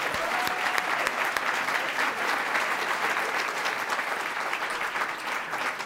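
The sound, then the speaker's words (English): Sustained audience applause at a City Club forum for Mayor Bibb and Connie Hill Johnson, a dense, steady wash of many hands clapping at even loudness for about six seconds, with no voices standing out. “Again, a round of applause for them today.”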